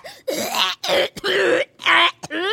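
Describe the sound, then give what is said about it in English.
A severe, loud coughing fit from a young girl with tuberculosis: a rapid run of harsh, strained coughs and hacking bursts with brief gasping pauses between them, no talking. “Suddenly we hear a coughing fit, far worse than any we've heard before.”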